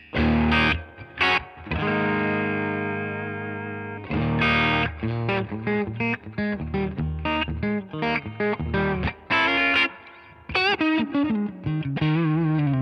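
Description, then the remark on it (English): Electric guitar, a Strat, through a Fender '65 Deluxe Reverb amp model preset with tremolo: a sustained ringing chord, then lively picked single-note phrases and bends, played fairly loud with no talking. “This is a 65 Deluxe Reverb.”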